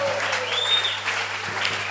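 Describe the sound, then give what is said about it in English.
An audience claps together in a dense, steady burst of applause in celebration, loud and continuous for the whole moment with a faint crowd murmur beneath. “Celebrating with a clap and go back to your feet.”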